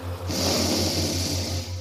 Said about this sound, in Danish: Og du starter med at trække ind i dig selv og trække luften ind igennem næsen.